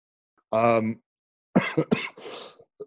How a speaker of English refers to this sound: I'm coughing because you just mentioned it.